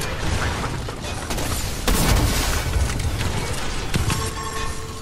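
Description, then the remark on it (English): A firework bursts with a loud, booming crack about two seconds in, followed by a smaller pop later, all over a constant rumbling, crackling wash of noise. “Oh, that's a firework. It works the same way as a flare gun.”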